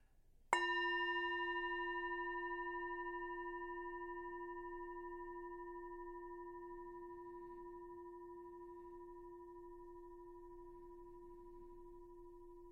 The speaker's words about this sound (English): We'll start and end with the bell.